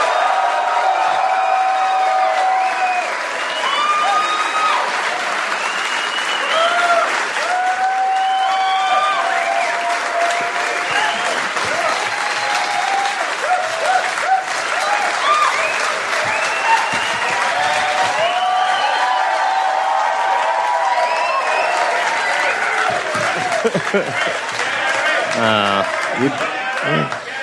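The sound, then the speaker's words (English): A large audience at the Dollop Down Under 3 show in Canberra applauds Dave Anthony and Gareth Reynolds steadily for nearly half a minute, a dense wash of clapping at an even loudness, with whoops and cheering voices rising through it now and then. “Let's have a round of applause for Dave Anthony and Gareth Reynolds.”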